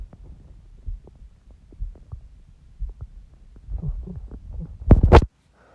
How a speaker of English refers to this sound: My microphone is catching my heartbeat. I have it on my arm and it's like showing me like it's like my heartbeat.